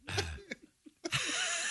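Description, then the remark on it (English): A harsh coughing fit: a heavy cough, a few short throaty catches, then another forceful cough that trails into a long, raspy, hacking exhale. No talking. “I just coughed up a manatee.”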